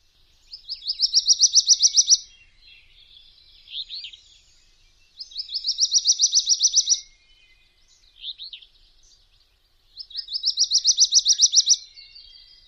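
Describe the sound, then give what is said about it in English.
Wilson's Warbler song repeated three times, each a bright, rapid chattering series of notes that speeds and rises, separated by pauses with softer calls. Clear, and no voices. “Wilson's Warbler songs are fairly variable and are possibly linked to distinct subspecies.”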